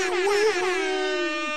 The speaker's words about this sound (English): Wait, really? Yeah, I have it. You have a boat air horn in your office that you hit like 4 times? Wow. Yeah. That's badass.